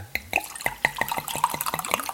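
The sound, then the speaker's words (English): Wine glugs from a freshly opened bottle into a glass in a quick, steady run of bubbling gulps, fairly clear, with a faint clink of glass and no talking; a cook pours a glass while preparing salmon. “I can't have an open bottle of wine unless I pour myself a glass.”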